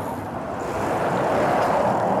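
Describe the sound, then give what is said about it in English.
A heavy truck roars past very close, about 2 inches from a cyclist on a busy road to Dublin, Ireland, in July 2020; its loud, steady rumble and rushing wind noise build slightly over a couple of seconds, with no voices. “Those trucks don't give you much quarter.”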